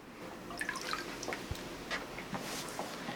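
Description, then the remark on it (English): Water drips and trickles in scattered, irregular drops from a ladle as someone drinks from it, fairly quiet, with small splashy patters and a soft low thud midway, no voices. “So I drink some of this water in a ladle.”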